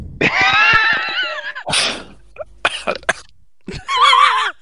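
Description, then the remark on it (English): Loud coughing in several harsh bursts, broken up by strained, wheezy, high-pitched voiced gasps at the start and end, with no talking. “Yeah, coughing.”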